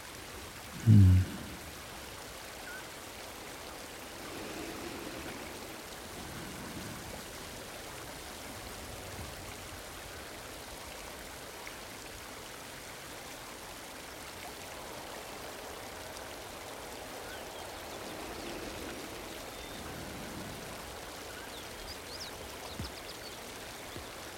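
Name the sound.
waterfall rushing water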